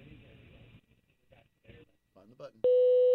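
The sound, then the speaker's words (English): Muffled, broken-up talk of a recorded outgoing voicemail greeting asking the caller to leave a message gives way to a single loud, steady electronic answering machine beep, a sustained mid-pitched tone held for over half a second signalling to record. “Where's the beep?”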